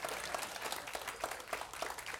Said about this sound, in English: Come on. If you're going to clap, clap. Don't patty cake.